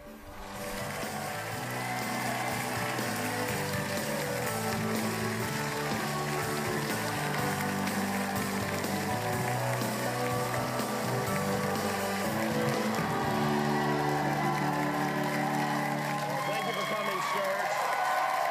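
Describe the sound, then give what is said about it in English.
A studio audience claps in a dense, unbroken wash of applause as Joe Biden, the 46th president of the United States, is welcomed. The applause holds steady and loud for the whole stretch, with some cheering and a tonal murmur layered underneath. “The just listen to the how much they clap and how cringe.”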